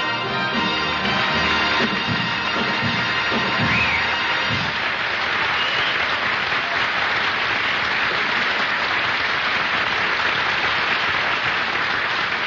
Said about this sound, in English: I could even hear the applause.